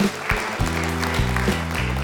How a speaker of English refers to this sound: Why don't we give him a round of applause as he comes to stage?